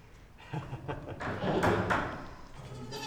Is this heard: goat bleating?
yes